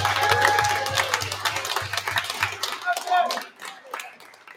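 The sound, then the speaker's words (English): A crowd applauds to vote for Michael Jordan as the best basketball player ever, with a dense, steady patter of many hands clapping, loud at first and thinning out toward the end, with scattered voices calling out among the claps. “By a round of applause, is Michael Jordan the best ever?”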